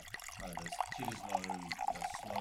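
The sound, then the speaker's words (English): Red mystery wine glugs and splashes steadily into a thick-rimmed 420ml glass tumbler for a couple of seconds, moderately loud, with a low voice murmuring underneath. “I'll close my eyes. And I'll pour it.”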